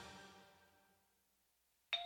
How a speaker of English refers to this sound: Saturday morning, the doorbell rings, and like many Americans, I answer it.